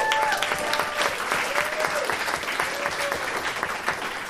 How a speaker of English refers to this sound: Man, I know some of you are tired and a little groggy, but let's just take a minute right now to applaud the Lord for what he did this weekend.